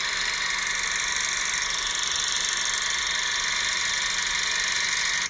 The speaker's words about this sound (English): Sewing machine? Oh, no, that was a good guess, though. That was a good guess. That is a 16-millimeter projector.